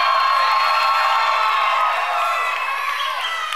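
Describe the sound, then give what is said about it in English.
A large crowd of Oklahoma State Cowboys fans cheers and shouts continuously at full volume, a dense roar of many excited voices with whoops rising above it, sustained throughout and easing only slightly toward the end. “You can shout out, you can yell, clap, do whatever you want to do.”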